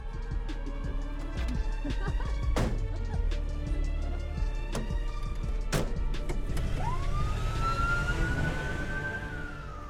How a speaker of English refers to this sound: Ambulance pulling off.